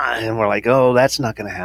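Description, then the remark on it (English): A voice imitates the rising, surging electrical hum that starts when the lights are turned on, with a loud drawn-out vocal swell, followed immediately by quick conversational speech. “Yes, because every time we turn the lights on, it goes,”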